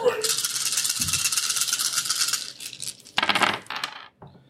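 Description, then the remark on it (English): Dice, including stress dice, clatter and rattle across a hard table in a sustained burst, then a couple of shorter rolling bursts follow, with faint voices murmuring underneath. “Can I get another stress dice?”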